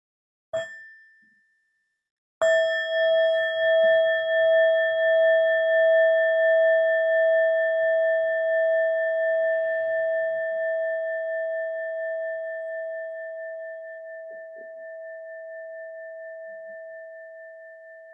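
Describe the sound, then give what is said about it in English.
A meditation bell is lightly tapped once, then struck fully; its clear, wavering tone rings out and slowly fades over many seconds in an otherwise quiet space. “So coming back now into our body and our breath and into the miracle of our shared presence, I'll invite the sound of the bell to bring us back.”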